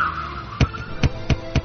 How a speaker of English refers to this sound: Ooh, she's had a blowout. The car's careening out of control. Off the road. Through the ditch. And coming to a gentle rest between two trees.